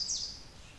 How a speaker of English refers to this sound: The American Redstart is a cheery, friendly warbler that vocalizes in a lot of different ways.